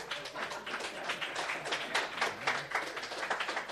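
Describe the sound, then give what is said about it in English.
An audience applauds to show how many of them listen to the show: a dense crackle of many hands clapping at once, holding a fairly even moderate level for a few seconds with no voices over it. “How many people here actually listen to the show? By round of applause, please.”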